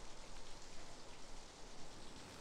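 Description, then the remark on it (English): Steady rain falls in a dense, even hiss of countless drops spattering a surface, fairly soft and constant throughout with no voices. “All that I saw was the slick, black stone stairs and the vividly blooming red roses and the rain.”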